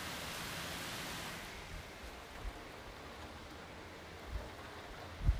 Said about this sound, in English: As I was trying to record, I could hardly hear myself because of the rain that is going on my skylights and on my window in my bedroom. Can you hear this rain?